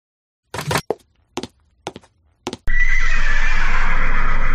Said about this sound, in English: What's with the sound of horses? We're not in a stable, are we?